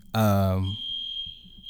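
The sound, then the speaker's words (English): A loud, brief vocal sound cuts off, and a thin, high-pitched smoke alarm tone then sounds steadily for about a second, clear but not overly loud. “That's what we're going to call this little smoke alarm that's going off.”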